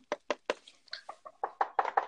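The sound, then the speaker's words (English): Knuckles rap on wood about ten times in a quick, fairly steady series, moderately loud, with no voices. The later knocks ring slightly hollow. “And knock on wood, you're going to have to hear this.”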